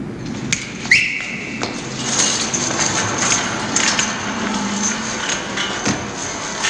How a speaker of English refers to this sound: There's not background music, so we can hear very clearly a sharp whistle from Bernardo and the sound of the sharks climbing a chain-link fence. They're the first to enter the scene.